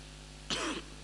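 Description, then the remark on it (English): A single short, harsh cough bursts out and ends within a moment, with a faint steady electrical hum underneath and no talking. “I'm coughing a bit, so you pardon me.”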